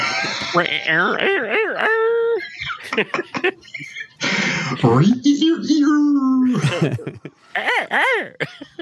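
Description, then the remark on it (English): A person vocally imitates a dog crowing like a rooster while singing a TV theme song, with drawn-out, wavering howl-like notes broken by short yelps, mixed with laughter and chuckling. “It was the dog acting like the rooster singing the Waltons theme.”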